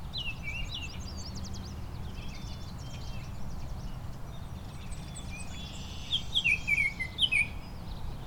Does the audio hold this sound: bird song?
yes